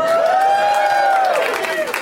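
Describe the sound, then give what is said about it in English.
A live show audience in a very hot room cheers and applauds loudly to make noise for the heat, with a dense wash of clapping and shouting and one sustained whoop or whistle rising above the crowd noise. “Make some noise for the heat, everybody!”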